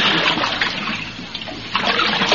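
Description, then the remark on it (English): Canoe paddles splash and swish through river water in a steady wash of sound that dips briefly, then surges again with a fresh stroke. No one speaks. “There's something about riding in the canoe that kind of makes you think things over.”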